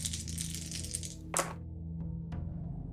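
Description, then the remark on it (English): Dice, an action die and two challenge dice, rattle briefly in a sharp clatter, followed by a couple of small clicks as they settle, over a low steady background hum. “We've got an 8 on the action die, a 4 and a 6 on the challenge dice for a strong hit.”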